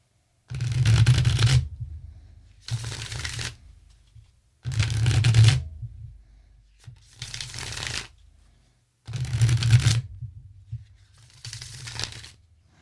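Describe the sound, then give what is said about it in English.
An alchemical tarot deck is shuffled: six crisp, rapid riffling bursts of about a second each, separated by short quiet pauses, with no talking. “I'm going to shuffle here.”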